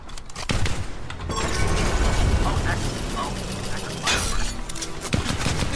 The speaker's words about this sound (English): Oh, that's a firework. It works the same way as a flare gun.